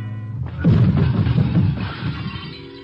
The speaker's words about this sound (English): Then my elbow bunched an object beside me. A serving cart loaded with dishes. I push it a few inches. The wheels don't make any noise. I give it a shove towards the wall and wait.